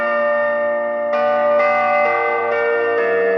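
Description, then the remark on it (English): Electronic chapel bells, played through a speaker in a bell tower, ring out in a steady sequence of sustained, overlapping tones, each new strike arriving about every half second, loud and reverberant with no voices present. “That is then picked up by electronic pickup, similar to an electric guitar, and then sent up to the speaker in the bell tower, and that's how your bells work.”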